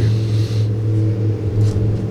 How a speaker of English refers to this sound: Wait for that car to drive by. Hold on.